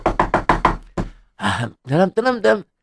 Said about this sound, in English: No one is answering. Somebody's home. Please knock on the door again.